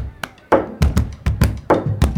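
Hands drum a rhythmic pattern on a school lunch table, alternating deep, resonant thumps with sharper slaps, about nine hits in quick succession, fairly loud with no voices.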